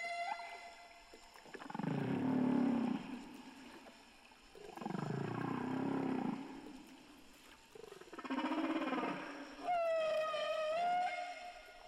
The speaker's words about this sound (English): And usually this theme is repeated many times, and then the whale moves on to the next one. The whole song, put together of all these different themes, lasts about 10 to 15 minutes, and then the song is repeated over and over.